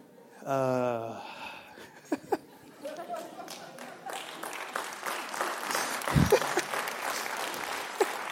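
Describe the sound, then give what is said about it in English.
A light, scattered golf clap from a church audience during a sermon, soft and polite, rising briefly after a short harmonic tone and continuing as a thin patter with some murmuring and a stray chuckle. “Appreciate the golf clap, by the way.”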